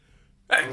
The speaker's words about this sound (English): Making breakfast seemed a little too long and I'm about to sneeze.